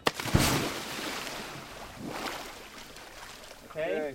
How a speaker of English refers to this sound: 2 weeks later, the recruits are on a small dive boat in the ocean, about 12 miles off Cambodia's coast.